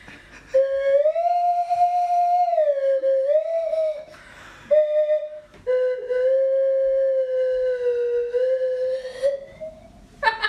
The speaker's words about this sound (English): Can you play that on the Swanee whistle?